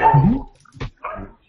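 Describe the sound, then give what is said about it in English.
The speaker's own dogs bark in a few quick bursts: a longer, whining yelp first, then two shorter barks, with no talking in between. “I'm sorry, those are my dogs.”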